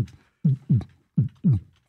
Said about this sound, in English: That's where it starts. Starts with the heartbeat.